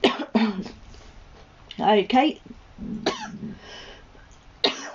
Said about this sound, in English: Oh, I had a coughing fit there.